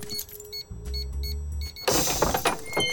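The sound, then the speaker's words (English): A secret dog door flap in a fence swings and thunks shut after a brief low mechanical whir, followed by a burst of clattering, rustling noise. “Through the secret dog door at the fence.”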